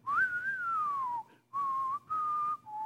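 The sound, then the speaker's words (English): A clear whistled spaghetti Western-style melody, as in a Clint Eastwood Western: one long gliding note that slowly falls, then two shorter steady notes separated by brief pauses, with no talking. “So far, we've almost been like in a Clint Eastwood Western, spaghetti Western. You know, if we could whistle.”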